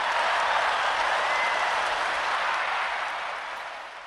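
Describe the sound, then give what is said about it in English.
A steady round of applause, dense crackling clapping from many hands that holds strong and then gradually fades toward the end, with no voices over it. “But shout out for not snitching, man. Round of applause.”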